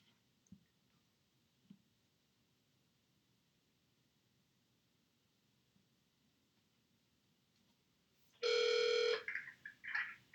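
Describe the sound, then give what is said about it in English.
Quiet background noise with a couple of soft clicks, then a loud electronic phone tone bursts in near the end, followed by shorter warbling tone pulses as a phone call is placed and rings. “Yeah, I just texted it to you. Call me on the okay. Phone okay.”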